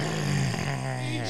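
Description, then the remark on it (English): A voice imitates a lion's roar: one loud, sustained, throaty growl lasting just over a second with a rough, buzzing texture. “Is a lion. What does it do? Eat people.”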